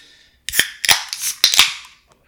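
Cans of Fancy Pants beer cracked open one after another, about three sharp metallic pops each trailing into a bright, fizzy hiss. No voices are heard.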